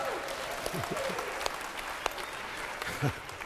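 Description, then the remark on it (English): Steady applause from a church audience, a dense patter of many hands clapping with a few sharper claps standing out, continuing evenly throughout. “That is not worthy of a clap, okay?”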